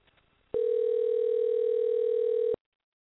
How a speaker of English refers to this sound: Alrighty, so I'm giving a call.